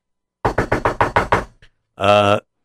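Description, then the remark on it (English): A quick run of about seven evenly spaced knocks on a door, fairly loud, followed after a short pause by a brief sustained vocal sound. “I hear a knock on the door.”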